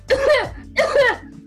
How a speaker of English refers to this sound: I've had this cough a little bit too fucking long.